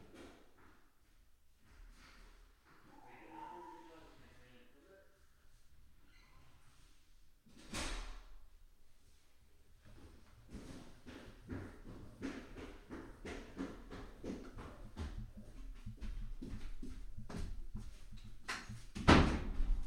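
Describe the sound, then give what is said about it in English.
A door is opened and later shut with a firm knock, amid rustling and handling noises, and a louder thud near the end; no one speaks. “sorry, someone at the door.”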